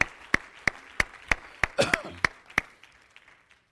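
An audience claps hands to Jesus in a steady, even rhythm, about three claps per second, with a brief vocal exclamation midway; the clapping fades out toward the end.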